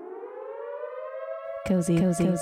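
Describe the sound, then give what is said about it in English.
An alarm sound effect: a steady siren tone slowly rising in pitch, then abruptly switching to a louder, choppy warbling pulse for the last second. “So in honor of OJ getting cozy on Valentine's Day, I'm going to close out this segment with a cozy alarm.”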